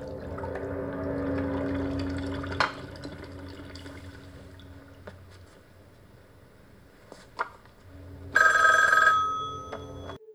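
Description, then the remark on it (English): A single short burst of a telephone ringing near the end, fairly loud, after a stretch of low background hum broken by a couple of sharp clicks. No one speaks. “He's gonna phone Wendy up in a few minutes to tell her.”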